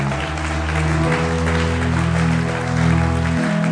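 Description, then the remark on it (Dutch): A church audience claps steadily for God in a dense, even wash of applause, while sustained keyboard or organ chords hold underneath for the whole stretch. No one speaks. “Oh, give God a big, big clap.”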